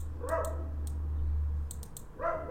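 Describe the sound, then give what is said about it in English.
A dog barks twice, one short bark near the start and another at the end, over a steady low hum with some faint clicking in between. “Hi, dog. Tell me about it.”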